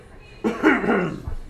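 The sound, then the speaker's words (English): A single fairly loud cough from a man coughing back at another man bursts out, with a raspy voiced tail that trails off, followed by a brief low thump. “I coughed back on him. He coughed on me first.”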